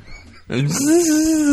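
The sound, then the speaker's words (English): A man's voice imitates a cow being killed with a drill: after a brief quiet moment, a loud, drawn-out moaning wail swoops upward, then holds a steady, strained pitch for about a second. “He's killing cows with a drill. Yeah. What would that sound like? I'll be the cow.”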